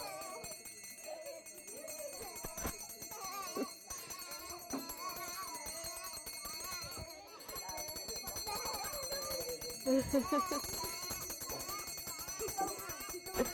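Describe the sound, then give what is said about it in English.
A bell rings steadily and almost continuously, its bright tones sitting over a busy, cluttered background with muffled voices and movement throughout. “You have to follow the bell.”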